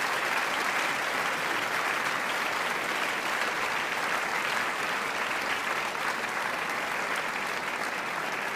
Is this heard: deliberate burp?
no